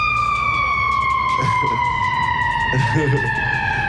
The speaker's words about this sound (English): I'll let this ambulance go by.